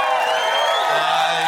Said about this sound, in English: You don't have to applaud again. I didn't mean to say it like I was.